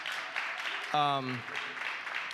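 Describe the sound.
Audience applause for a team member who helped with the IF Women's Conference, a steady, dense clatter of clapping that fills the whole stretch, with a single short voiced cheer rising above it partway through.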